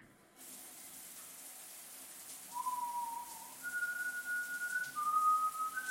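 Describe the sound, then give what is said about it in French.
A woman whistles an odd, wandering tune while taking a shower, in a few long, sustained notes that step up and down, over a steady hiss of running shower water. No one speaks. “elle sifflait toujours ce même air étrange”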